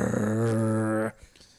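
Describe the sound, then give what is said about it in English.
A person imitates a rapper's growl: one loud, low, raspy sustained growl lasting about a second that cuts off abruptly, followed by near silence. “…. Yeah, he growls.”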